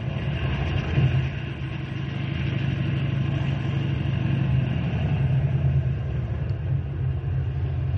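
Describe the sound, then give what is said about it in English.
A car engine idles steadily for several seconds, a continuous low rumble with an even, unchanging hum and no voices over it. “Henry, bring the car around front.”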